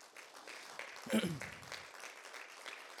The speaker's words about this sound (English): I may as well just, that was just a little bit of a shallow hand clap. You may as well just kind of double down on that for a minute.